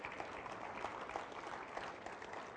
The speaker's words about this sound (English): You can clap if you want to. I heard somebody start to, so it's all right.